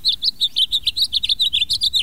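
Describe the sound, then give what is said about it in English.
A bird sings at sunrise in winter, a rapid, steady series of bright, high chirping notes, about a dozen in two seconds, clear over a faint low rumble, with no voices. “But even in winter, some birds greet the sunrise with song.”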